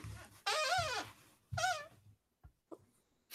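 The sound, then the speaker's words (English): A squeaky rocking chair that needs some WD-40 squeaks loudly twice, each drawn-out creak wavering in pitch, followed by a few faint knocks and clicks as the rocking settles. “It's my squeaky rocking chair. Love it. Good rocking chair sound effect.”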